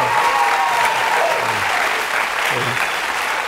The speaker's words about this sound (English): It's always fun when they clap like that as though I can like sign that into law. Like, enough of you clapped, and yes, now it's happening.